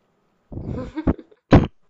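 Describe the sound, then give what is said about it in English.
A person coughs: a rough, raspy throat burst followed by a sharp short hack and then one more forceful cough, all in quick succession with no talking. “Sorry, I keep flipping it up because I keep coughing today and I'm trying to minimize the amount that you're going to have to edit out.”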